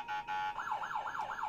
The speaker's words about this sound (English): gets the siren.